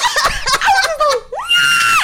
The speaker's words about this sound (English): He just came out of nowhere. Yeah, sorry, I'm still screaming.